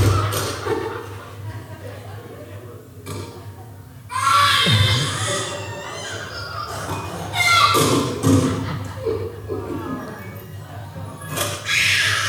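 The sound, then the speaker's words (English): Children scream in loud, shrill bursts that rise and fall several times over a noisy, crowded background, with occasional thumps and shuffling between the outbursts. “That's enough children screaming.”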